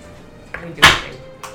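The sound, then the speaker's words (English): A sliding door rumbles along its track with a loud, brief scraping rasp in the middle, framed by softer knocks just before and after, with a quiet background. “I have to lube up my sliding door. Yeah, oh. It's very loud.”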